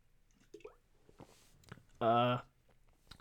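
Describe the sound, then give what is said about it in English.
A few quiet, wet mouth clicks of someone sipping water, followed by a short, loud voiced 'ahh' after swallowing. “Sorry, my voice is like, I'm losing any sip of water here.”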